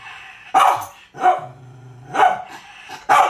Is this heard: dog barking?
yes